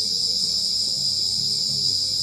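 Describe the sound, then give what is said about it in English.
A dense, steady chorus of crickets chirping continuously at night in the Gambia, loud, with a faint low rumble underneath and no voices. “The crickets are singing.”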